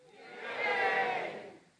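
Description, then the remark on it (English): A crowd cheers at the name Mordecai in one short, swelling burst of many voices, rising to a loud peak midway and tapering off, with no one speaking over it. “So every time Mordecai's name, the listener would cheer.”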